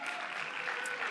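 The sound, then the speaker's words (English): An audience claps together for pastors in a dense, steady patter of many hands, fairly soft and even throughout, with no voices breaking through. “Like you guys should be clapping loudly when I say that.”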